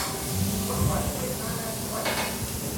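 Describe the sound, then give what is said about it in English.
A grill at the back of an eatery where customers eat burgers, worked by a man, sizzles with a steady, dense hiss that runs the whole time, moderately loud, while faint voices murmur indistinctly in the background. “The grill was sizzling.”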